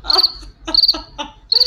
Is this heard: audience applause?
no